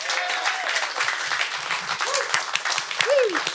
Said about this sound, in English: And I want to give a round of applause for everybody that's here in the audience.